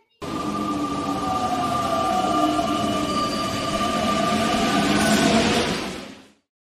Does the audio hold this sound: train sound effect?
yes